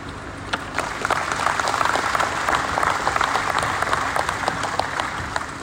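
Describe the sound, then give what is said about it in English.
A crowd applauds the speakers at an event, many hands clapping in a dense, continuous patter that stays fairly loud and even throughout, with no voices standing out. “And a big round of applause for all of our speakers.”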